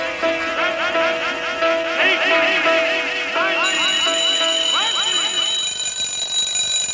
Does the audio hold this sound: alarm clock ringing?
yes